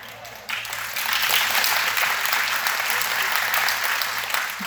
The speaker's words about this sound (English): He said, I didn't know that I would get such a big round of applause for my dress from the jungles of Peru.